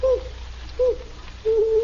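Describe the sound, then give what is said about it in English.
An owl hoots three times at a steady pace, two short calls followed by a longer drawn-out one, moderately loud over a faint low background hum. “That's all it is, just an owl.”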